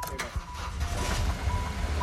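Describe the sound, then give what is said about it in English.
A car engine, misfiring with a cylinder dropped, runs rough and uneven, its low chugging skipping and stumbling irregularly, with a faint steady tone above it and muffled voices in the background. “Now that we got it running, like Morris' car, misfiring, running rough”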